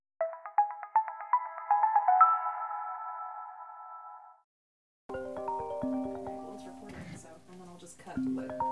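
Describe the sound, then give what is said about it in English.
A phone rings with a bright electronic ringtone of rapid, repeating melodic beeps for about four seconds during a call to a person's mother. It cuts off into a brief silence, followed by a muffled voice over the line. “So for chapter 2 of this episode, I guess, we're going to tune in and listen to that phone call and hear her share some of those stories”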